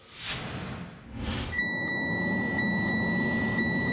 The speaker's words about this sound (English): The dreaded low fuel warning.